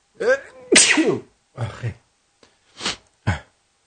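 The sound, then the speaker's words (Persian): A person sneezes loudly, with a sharp explosive burst followed by a few more short, breathy sneeze-like bursts spaced over a few seconds, no talking in between. “خیلی ممنون از اینکه با ما بودید، ببخشید از عطسه، و امیدوارم که همیشه خوب باشین.”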